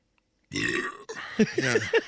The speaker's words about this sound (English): Oh man, that's a lot of burp. Yeah, that's a lot of soda. It sits in there, right? Sits heavy.